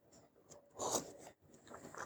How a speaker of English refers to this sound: Excuse me, I had to take a sip of coffee.